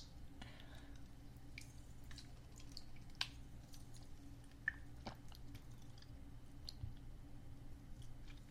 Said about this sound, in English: Like, my voice is getting raspy. Let me just drink a little sip of water.